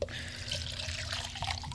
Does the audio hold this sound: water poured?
yes